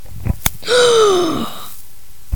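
A sharp, drawn-in gasp of horror, fairly loud, rising then falling over about a second, framed by a couple of faint clicks and no talking.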